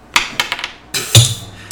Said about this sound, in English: Shit! Dice went all the way to the other side of the room.